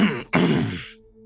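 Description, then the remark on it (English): A small, throaty cough in two quick, rough bursts, fairly loud, then fades into a faint low hum, after a drink of water from a wooden cup. “will just take a drink of it and then cough a little bit.”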